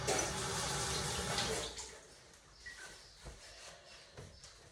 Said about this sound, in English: So I'm just going to wash my hands.